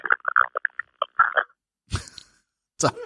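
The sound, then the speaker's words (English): A fart: a string of short, sputtering squeaks and pops, then two louder, rougher blasts with a pause between them, with no talking. “A fart, was it?”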